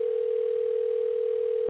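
A steady telephone dial tone hums at one low-mid pitch, unbroken and fairly loud, with a thin phone-line quality, then cuts off abruptly as a call is placed to a listener. No one speaks.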